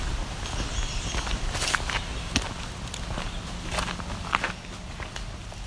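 Steady footsteps crunch along a dirt lane with a green patch down the middle, at an unhurried walking pace, each step a soft gritty scuff against a quiet outdoor background; a hike on Circle G Lane, a low-maintenance road just west of Neashingaming, through a swampy area of flooded forest.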